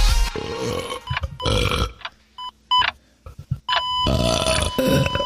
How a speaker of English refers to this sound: Wow, that didn't sound good. Do you have to belch so much? It's in the intro.